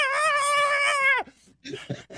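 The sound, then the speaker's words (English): A voice imitates Shark Tank's Barbara Corcoran as a distressed baby bird caught in an oil slick: a long, high, strained, wavering cry that suddenly drops in pitch, then a few short, choppy gurgling bursts. “It looks like a baby bird caught in an oil slick.”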